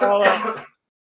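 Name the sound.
coughing and throat clearing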